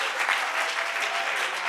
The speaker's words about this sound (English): Can you clap your hands and can somebody give praise unto his name?